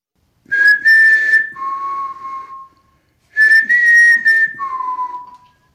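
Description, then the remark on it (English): A clear whistle on an EVP recording sounds twice, each time a steady higher note sliding down to a lower held tone, with a short silent gap between the two phrases and no talking. “If I can get back in there and do that one more time and hear that thing whistle back.”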